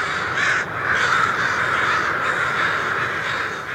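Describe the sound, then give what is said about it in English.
A dense, continuous din of thousands of crows cawing at once, a loud overlapping chorus of harsh calls with no pauses, as the flock leaves its roost in Danville, Illinois, in the morning about an hour before sunrise. “Imagine the ruckus when the first few thousand crows leave in the morning, about an hour before sunrise.”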